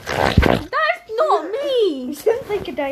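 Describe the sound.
A voice imitates a woman's hay-fever sneeze with a harsh, pig-like snort: a loud, noisy nasal burst at the start, then a wavering, squealy vocal sound.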